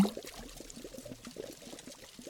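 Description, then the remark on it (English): Water pours steadily into a pot of mixed herbs to be boiled, a soft continuous burbling splash with irregular gurgles, fairly quiet, with no voices. “Now, just the water. Let it boil over.”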